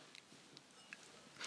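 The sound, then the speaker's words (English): Quiet munching on croissants at breakfast in the morning: a few soft, crisp crunches at irregular intervals, the last one a little louder, with no voices. “And the morning and the munching of Z.”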